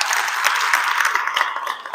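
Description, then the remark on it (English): A crowd applauds steadily for a man honored for keeping Mobile Tech moving within the detail industry, a dense wash of many hands clapping at once, fairly loud and sustained throughout with no voices standing out. “So Jim Gogan, give him a round of applause.”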